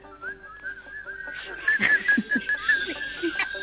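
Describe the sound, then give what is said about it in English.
Several people whistle together, a wavering high tone that rises and falls unevenly, moderately loud, with some scattered voices and noise mixed underneath. “Everybody whistle.”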